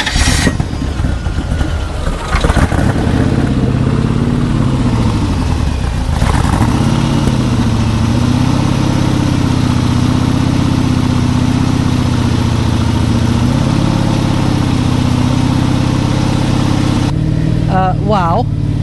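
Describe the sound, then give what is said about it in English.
A motorcycle engine, just started in neutral by turning the key without throttle, rumbles into a steady, loud idle, its low throb holding even for the whole stretch while a person talks faintly beneath it. “You can hear it, I'm sure. You probably can't hear me, but it's smooth, but it's vibrating, and I'm not sure.”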